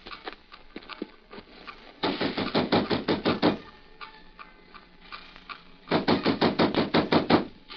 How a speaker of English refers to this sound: Come on, we'll knock at the side door of Taishar Shung's house.